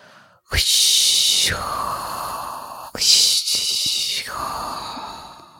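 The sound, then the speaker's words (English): A voice imitates ocean waves with two long, breathy whooshes, each a loud hissing rush that swells and then fades into a lower, raspy exhale. “Can I do the wave sound? Yeah, do the wave sound, please.”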